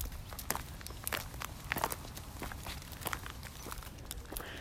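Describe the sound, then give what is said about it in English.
Steady footsteps of a man walking up a road crunch over a tar-and-chip surface of liquefied tar and tiny gray rocks, each step a short gritty crackle in an even walking rhythm, with no voices over them. “That crunch is tar and chips.”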